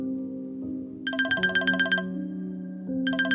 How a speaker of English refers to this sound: When the phone chirped from his pocket, his hand scrabbled through clothing to silence it and swipe off all alarms other than vibrate.